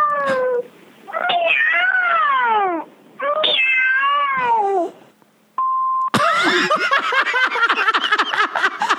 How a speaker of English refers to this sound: What? That is her fucking voice. That's her voicemail. That's her voicemail. Outgoing message. Three meows.